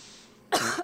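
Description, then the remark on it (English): A single short, harsh cough bursts out after a moment of quiet background hiss, trailing off with a slight rasp at the end. “Sorry, just a little cough I have.”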